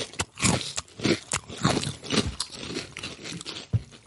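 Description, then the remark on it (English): Crisp, loud crunching of Grain Waves snack chips, an Australian snack, being chewed: a steady run of bright crackly bites with dull mouth thuds beneath, repeating about twice a second with no talking. “Let's start with the Grain Waves. We always start with the Australian. Here we go. Grain Waves.”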